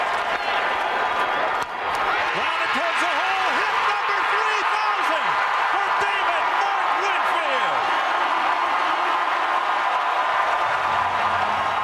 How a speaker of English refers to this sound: Kind of a little bouncer, September 16th, 1993 at the Metrodome. A fairly loud-sounding crowd. It wasn't that large, I don't recall, but it was maybe 20-some thousand as David Winfield closed in on his 3,000th hit.